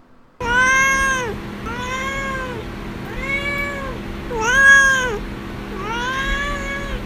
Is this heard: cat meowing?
yes